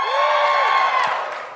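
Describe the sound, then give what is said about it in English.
A live audience cheers loudly when asked to cheer if they are at or have been at the University of Auckland, with shrill whoops and yells rising over a dense wash of crowd noise that holds steady and eases slightly at the end. “Just give me a cheer if you're at the University of Auckland, or have been.”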